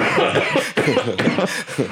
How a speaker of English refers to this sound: You see what I'm doing right here? You see what I'm doing, right? I'm coughing into my arm because I don't need a mask.